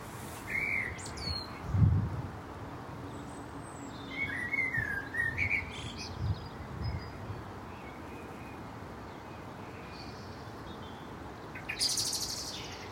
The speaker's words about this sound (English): Well, that was the gorgeous, rather sultry tones of a blackbird. And they are just beginning to sing. We're in the middle of February right now, so recording this. And more birds are singing. I love that blackbird song.